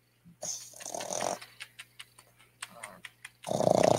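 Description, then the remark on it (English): A puppy makes rough, growly snuffling noises, then a run of short whimpering huffs, ending in a louder, drawn-out whine. No one speaks. “What's wrong, puppy?”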